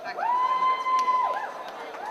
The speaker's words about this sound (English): One more round of applause to all of our Hall cosplay participants.